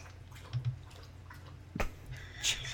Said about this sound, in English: sorry, my dog is lapping up water in the background. One moment.